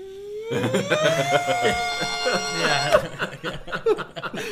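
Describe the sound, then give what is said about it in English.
A person vocally imitates a computer's noise heard at a software demo of an AI plugin for Premiere and Resolve: a steady whirring hum that rises in pitch and holds for about three seconds, then breaks into choppy, sputtering fragments. “Like, you've been around enough servers that you can mimic the sound.”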